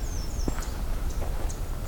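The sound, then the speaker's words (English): A few soft, sharp chip notes of American redstarts tick out at irregular intervals, faint, over a steady low outdoor rumble. “I think those are probably American Red Starts.”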